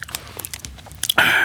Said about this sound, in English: I can't chew these quiet, though. Pressure. You can't chew it quiet, can you?